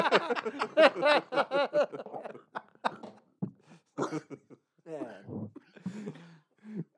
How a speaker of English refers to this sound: coughing to death, but he still had like a tiny T-Rex arm that he was waving at us.